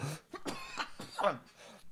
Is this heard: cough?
yes